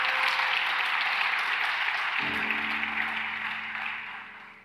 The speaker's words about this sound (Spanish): ¿Podemos darle un aplauso a Dios por eso?